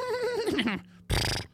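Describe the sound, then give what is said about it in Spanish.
A person imitates a mare's whinny with a wavering, descending vocal neigh, followed after a short pause by a harsh, breathy snort-like burst, loud. “Anyway, imagínate tú que hay una yegua afuera y tú dices a un caballo y ella te haga.”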